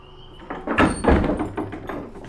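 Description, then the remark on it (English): A door opens with a couple of heavy wooden knocks and rattles in quick succession, then settles into a faint creaking shuffle. No voices. “Someone leave the door open?”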